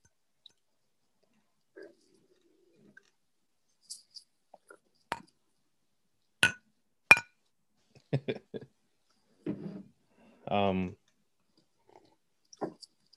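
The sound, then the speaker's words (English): Glasses of premium British ale clink together in a toast, two sharp bright taps, followed by scattered small clicks and a short voiced murmur. “Cheers. Cheers. Cheers, dude.”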